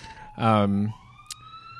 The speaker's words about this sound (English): The Jesus fucking Christ sirens.